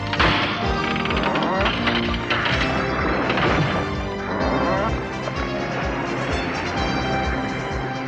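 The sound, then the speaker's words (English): A burst of crashing and shattering as one hit breaks a force field and smashes a set of cubes apart, with sharp impacts and debris clatter over steady background music, fairly loud throughout. “Yeah, one hit completely breaks the force field, shatters all the cubes.”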